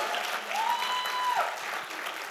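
An audience claps in a steady, dense round of applause, with a single high whistle rising and holding briefly partway through before the clapping carries on.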